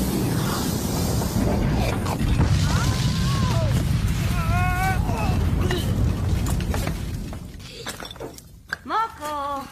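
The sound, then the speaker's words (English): A flying machine crashes into a castle: a loud, sustained crash of shattering and rumbling debris, with voices crying out over the chaos before it settles and a few shouts ring out near the end. “they come up on the castle, and she's like, I don't know how to stop this thing. And she just crashes it.”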